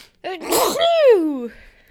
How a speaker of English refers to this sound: God bless me. Bless you, darling.